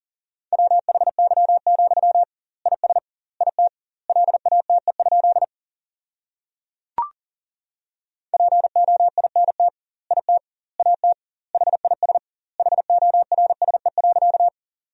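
Rapid Morse code keyed at about 40 words per minute with doubled word spacing, sending sentences made from the 300 most common words, in a single steady mid-pitched beep, sent in two long runs separated by a pause with one brief click.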